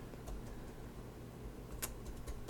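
Scattered, irregular clicks of typing on a computer keyboard, fairly faint and close, with a few sharper keystrokes standing out over a low background hum. No one speaks.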